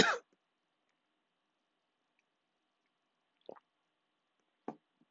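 speaker drinking water

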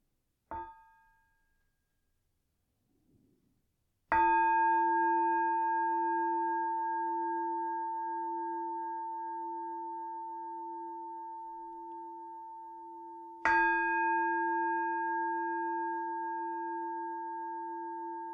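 meditation bell rung

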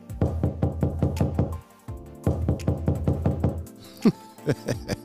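knocking on a door

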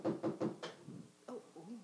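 knocking on a door

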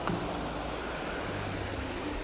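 flowing river water

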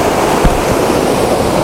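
river water flowing

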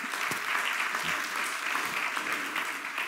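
audience clapping

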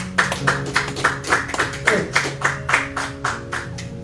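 audience hand clapping

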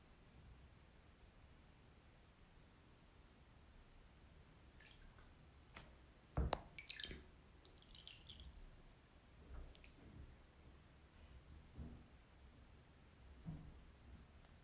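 water dripping

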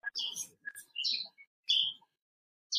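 birds chirping

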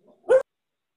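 dog barking

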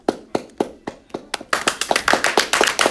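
applause

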